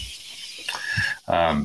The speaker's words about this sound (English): But it also sounds like the entire family of cicadas have moved into your backyard. Is that It's actually a quiet night. They're not as loud as Monday night.